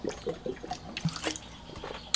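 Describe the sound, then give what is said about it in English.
Someone drinks water and spills it on themselves: water splashes and drips, with small gulping and sloshing sounds, a few sharp droplet clicks and a brief spill near the end, no talking. “Get some water and drink it, please, okay?”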